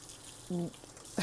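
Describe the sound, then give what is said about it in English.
Water runs from a tap in a steady, soft hiss throughout while Maggie the pet's water bowl is being cleaned, with a brief voiced sound in the middle and a short clatter or splash near the end. “Sorry, I'm cleaning Maggie's water bowl.”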